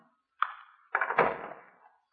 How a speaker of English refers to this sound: she's unlocked 3 different locks to open that door. Yeah, one of her eccentricities, I guess.